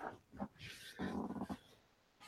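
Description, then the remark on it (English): A dog, Roxy, makes grumbling, whiny vocal noises: a short sound, then a longer drawn-out one about a second later, with no one talking over them. “What's up, dog?”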